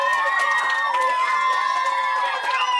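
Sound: applause and cheering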